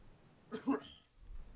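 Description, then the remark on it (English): A single short, muffled cough, fairly quiet, followed by a low background rumble with no talking. “Nope, just a cough.”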